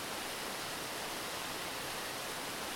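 Steady rushing water of a waterfall pours without pause, a dense, even hiss. It stays constant and fairly soft throughout, with no voices.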